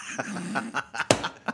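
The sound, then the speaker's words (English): A dog makes a string of short, squeaky whines and yelps, about half a dozen quick bursts with one sharper squeal near the end. No talking. “I thought you stepped on something. It was the dog.”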